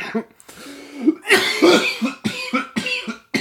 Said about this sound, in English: I'm coughing. I'm coughing hard.